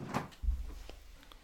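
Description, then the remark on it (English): A front door is opened after someone knocks, with a sharp bump, followed by a low rumbling thud and a couple of faint clicks and rattles, with no talking. “John's just going to the door because someone's knocked it.”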